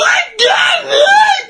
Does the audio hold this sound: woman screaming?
yes